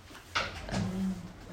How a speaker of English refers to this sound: Can you unlock the sliding door? The sliding door.